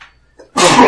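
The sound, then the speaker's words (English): A single sharp sneeze bursts out loud, preceded by a faint inhaled breath, with a broad noisy spray of sound lasting about a third of a second. “Bless you.”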